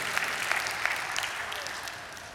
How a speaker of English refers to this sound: Would you read that again for me? Everybody's clapping. I didn't hear you.